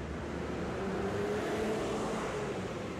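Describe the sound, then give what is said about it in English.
Steady street traffic rumbles throughout, a constant wash of car noise with a faint engine hum and no single vehicle standing out. No one speaks. “Marky's nerves kicked in a little when she heard the cars.”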